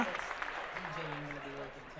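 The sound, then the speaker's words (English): A brief burst of scattered hand clapping from a few people, steady for about two seconds, with a man's voice talking over it. “Yeah, can I get a clap for that?”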